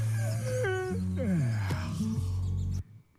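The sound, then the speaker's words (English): An animal yawning: a loud, drawn-out voiced whine that swoops up and down in pitch for nearly three seconds, then cuts off abruptly into quiet. No one talks. “That's him yawning.”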